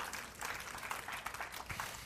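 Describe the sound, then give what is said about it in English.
An audience at a church sermon claps steadily, a dense, even wash of many hands with no voices over it, holding at a fairly low level throughout. “Yeah, you keep clapping.”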